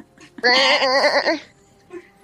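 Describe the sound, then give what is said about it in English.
A single loud goat bleat, drawn out for about a second with a quavering, wobbling tone, clear, followed by a brief faint sound. “Seconds later, you're going to hear some noises. It's the goats she ate.”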